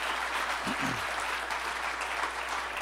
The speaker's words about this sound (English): Takes a lot of effort to vacuum these chairs, to clean up this room and set it up, and then obviously to have a special song and a great worship team. Could you please just give all our volunteers a round of applause?